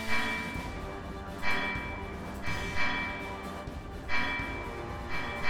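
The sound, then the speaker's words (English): A large bell in a bell tower tolls repeatedly at a steady pace as an emergency bell, each strike ringing out and lingering over a dense, rumbling background. “And go out one of those side doors and are going to try to make their way to the bell tower, which you can hear is now ringing an emergency bell.”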